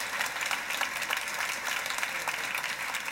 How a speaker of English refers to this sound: And I hope that I've done your presence here justice, but it's been fantastic to have you both. Can we have a big round of applause, please